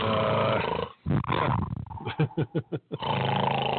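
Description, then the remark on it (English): Loud, rasping snoring: a long, rough, growling stretch, a brief pause, then a run of five or six short, choppy snorts before the heavy rumble returns. “I said no snoring.”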